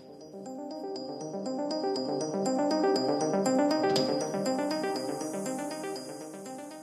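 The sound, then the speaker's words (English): Church bells of the Peter and Paul Church ring in a continuous, overlapping peal, their bright metallic tones struck in a steady rhythm and blending into a rich, resonant wash at fairly loud volume. “Church bells chime as I step into the Peter and Paul Church, tucking my hood over my head.”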